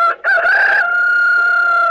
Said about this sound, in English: That was the rooster. Oh, you think I'm terrible, don't you? You think I can't act as well as that rooster?